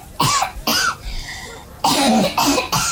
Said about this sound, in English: He is coughing up nettle leaves now.